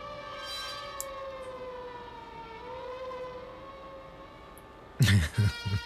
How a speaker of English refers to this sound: That sounds more like an ambulance.